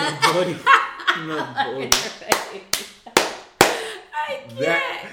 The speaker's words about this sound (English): Can you not clap like that?